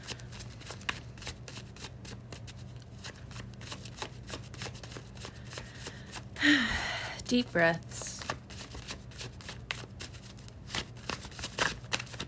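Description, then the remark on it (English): A deck of tarot cards is given a few shuffles, a steady run of quick papery flicks and riffles, with a brief spoken phrase and a low background hum partway through. “Let me give the deck a few shuffles and we can get into it.”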